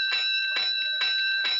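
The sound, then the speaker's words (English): Fire station alarm bells ring loudly and steadily, sounding five bells for a five-alarm fire, struck in a quick regular rhythm of about four strokes, their bright metallic tones sustaining between hits with no voices present. “Five bells, stand by all stations.”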